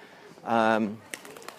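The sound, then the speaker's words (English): A single low, drawn-out pigeon coo, followed by a few faint, sharp flutters or clicks as pigeons fly away, in quiet countryside covered in olive trees. “There's some pigeons here flying away.”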